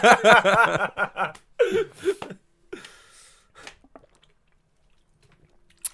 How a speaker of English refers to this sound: The sounds of people drinking, huh?